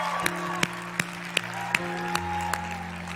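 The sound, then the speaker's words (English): A crowd claps in a steady rhythm, sharp beats about three per second, over sustained music with held keyboard tones; no clear cheering voices stand out. “Can you guys lift up a cheer for people who made that decision today?”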